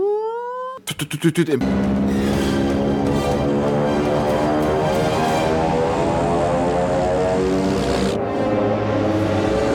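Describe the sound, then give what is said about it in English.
A loud engine drones and revs as it gets closer, its pitch climbing steadily for several seconds after a brief rising whine and a few quick thumps at the start, with no voices. “And that music cues up, and the revving of the engine it gets closer to that.”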